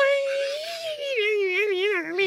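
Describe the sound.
A voice wails a sustained, rising and falling tone in imitation of an electric guitar, wobbling into a vibrato toward the end. The single continuous note lasts about two seconds with no words.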